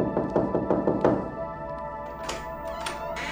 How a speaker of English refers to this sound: To me, I remembered the knocking on the door and not answering it, falling back into an uneasy sleep. And I remembered the knocking on the door, answering it, and the attack that followed.